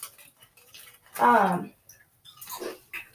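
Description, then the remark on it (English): Crunchy chewing of Cinnamon Toast Crunch cereal eaten as a snack, with quick crackly bites spread across a few seconds and a short murmured voice sound in the middle. “Oh yeah, so delicious. Cinnamon Toast Crunch, okay.”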